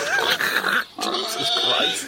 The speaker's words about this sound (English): I'm going to try and get some pig sounds to go in on that bit when we do the Yeah, really make it feel like we're in a farmyard.